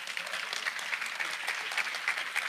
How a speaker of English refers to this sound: And keep clapping until she takes the mic.